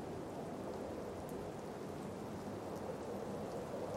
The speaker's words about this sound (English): Now, gentle rain falls from the clouds down onto the mountaintop. It lasts only a little while.